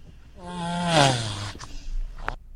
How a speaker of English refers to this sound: Was it not only a turtle fucking, it was a turtle ejaculating so hard that I don't think he's ever going to have a better orgasm than that.